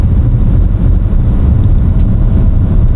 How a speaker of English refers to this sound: It's very dense bush, and as you just heard, we are now heading up over the potholes as we go looking for the big birds.